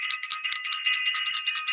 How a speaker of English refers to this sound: I want to do this. I want to ring the bell.